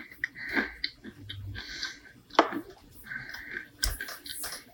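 Crunchy chewing of a hard, nutty, pumpkin-spice granola bark snack, with irregular crackling bites and brittle snaps spread over a few seconds, no talking.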